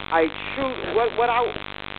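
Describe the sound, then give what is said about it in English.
A steady low electrical hum of static runs through a narrow, tinny phone-line connection dialed in to a radio broadcast, with a muffled, indistinct voice rising and falling over it for the first second and a half. “So, but if there's this much static that I'm hearing, then they're not probably able to hear.”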